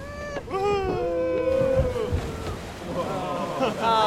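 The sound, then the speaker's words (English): A log flume boat ride rushes down a drop with a broad watery wash and splashing, while riders scream and whoop excitedly over the rushing noise. “Did you get wet? I got splashed right up on the front though.”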